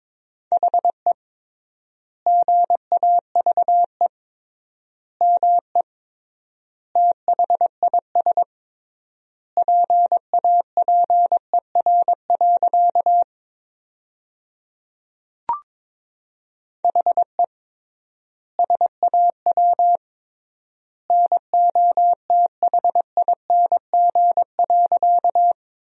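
Morse code sent at 22 words per minute with triple word spacing, sentences built from the top 500 words, in a single steady mid-pitched tone, quick dots and dashes grouped into words with long silent gaps between them, plus one faint click midway.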